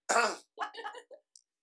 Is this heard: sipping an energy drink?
no